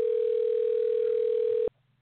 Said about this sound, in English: I just muted B. Austin and the phone stopped ringing